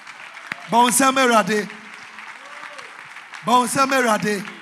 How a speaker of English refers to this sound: Stand to your feet. Clap your hands for the Lord.